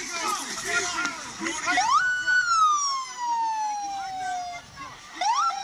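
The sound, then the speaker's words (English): An ambulance siren wails, sweeping up and holding a long falling tone before rising again, loud over indistinct voices and background street noise, as people block the ambulance in the street. “Yeah, they're blocking they're blocking an ambulance.”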